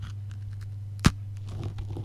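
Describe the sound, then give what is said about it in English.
A single sharp, crisp crunch of a dry biscuit being bitten, followed by faint crackly chewing noises over a low steady hum. No one speaks. “Solid crunch on the first, on the bin.”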